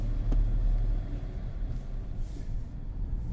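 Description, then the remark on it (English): Steady low engine rumble and road noise of a rental car moving along, heard from inside the vehicle, with a brief click near the start and no one talking. “So the rental car, the radio on, we're ready.”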